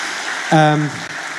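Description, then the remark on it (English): A church audience applauds to greet one another and the online church, a dense, steady patter of clapping, and a single voice briefly rings out over it partway through before the clapping carries on. “Should we greet one another and the online church just as a one more round of applause?”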